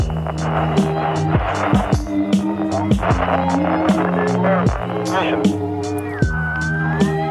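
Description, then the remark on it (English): A school bus engine drones and rumbles as the bus pulls away, with rattling clunks and creaks over a steady low hum and a rising whine near the end. “Dogs aren't allowed on the school bus.”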